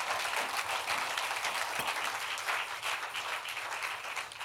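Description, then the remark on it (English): An audience claps hands together unto the Lord in a dense, steady wash of overlapping claps that holds at an even, fairly loud level throughout, with no voices standing out. “Somebody, can you clap your hands unto the Lord?”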